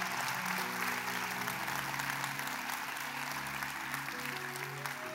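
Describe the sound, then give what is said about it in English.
An audience claps for their team in a dense, steady wash of many hands, holding an even loudness throughout, with low sustained musical tones humming faintly underneath. “Y'all gonna clap louder than that for your team.”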